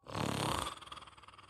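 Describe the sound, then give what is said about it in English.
A sphinx, a large creature, takes a long, sniffing inhale at the air: a loud, breathy rush of air with a deep rumbling undertone that swells, then thins into a hissing, fluttering draw before fading out. “The Sphinx gives a long inhale.”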